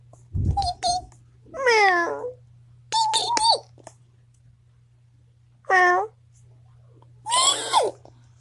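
A cat meows five or six times in short, separate calls, some rising and falling in pitch, fairly loud over a steady low hum, with no talking.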